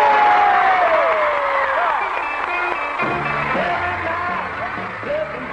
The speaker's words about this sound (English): So now, a big round of applause for ….